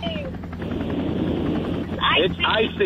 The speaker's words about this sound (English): So if you don't mind pretending that, you're live from our helicopter.